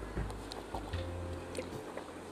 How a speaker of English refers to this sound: I'm sorry, y'all needed a water break. I'm getting a little thirsty sitting out here.